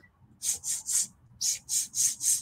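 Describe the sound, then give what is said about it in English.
A presenter's voice imitates a Madagascar hissing cockroach during a presentation about the insects: seven short, breathy hisses, three, then a brief pause and four more, each a loud, airy burst in an even rhythm. “If I'm just going to speak the whole rest of this presentation in Madagascar hissing cockroach language.”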